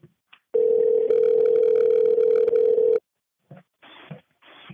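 A phone on speaker in a small bathroom, about 18 inches from a person, gives a steady, loud dial tone for a few seconds while dialing an emergency call, then goes quiet before short bursts of ringing or line noise follow as the call connects.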